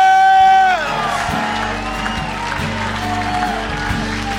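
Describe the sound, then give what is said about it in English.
A crowd breaks into loud, sustained applause and clapping for Jesus, with cheers and whoops mixed in, after a brief held, shouted voice at the start. “Come on, just like the biggest applause and clap for Jesus.”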